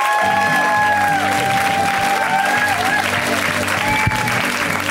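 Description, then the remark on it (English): An audience applauds Bobcat and everyone seen tonight, clapping steadily throughout, a dense, loud wash of applause with a few scattered whistles and faint cheers rising above it. “And in fact, why don't you keep it going for everybody you saw tonight?”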